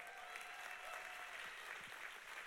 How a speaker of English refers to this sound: Any graduates here? Come on, let's clap our hands for all the graduates.